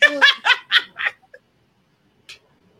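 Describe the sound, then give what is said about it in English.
A dog excitedly greets a visitor with a quick run of five yipping barks, followed by a couple of faint short squeaks and a brief whimper after a pause. “My dogs”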